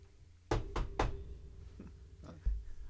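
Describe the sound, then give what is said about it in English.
Three quick, firm knocks on a door in a steady rhythm, followed by a couple of softer, scattered thumps, with a low hum in the background. “So it's me? Yeah, okay. I'll answer the door.”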